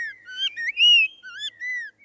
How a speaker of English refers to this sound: A sweeter voice belongs to the spot-breasted oriole. Found in suburban neighborhoods around southeast Florida, spot-breasted orioles were first brought to Florida in the 1940s from Central America.